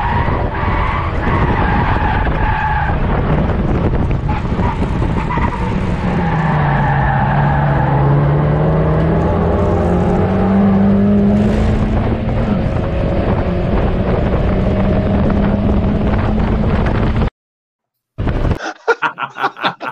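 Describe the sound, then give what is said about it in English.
A rear-wheel drive race car's engine roars loud while its tires screech through a long slide that the driver holds and pulls back, pitch wavering, with wind buffeting the microphone, then a sudden cut to silence and a brief burst of noise. “In a rear-wheel drive car to pull that back, that was brilliant.”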